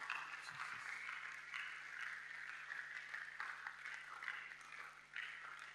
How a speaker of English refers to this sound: Let's be on our feet. Oh, your clapping is not, it's too weak.